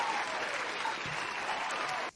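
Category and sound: crowd, round of applause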